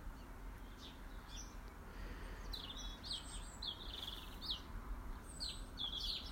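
Birds in a garden in the morning chirp and sing in scattered bursts, several high, bright calls overlapping over a steady low outdoor rumble, with no one speaking.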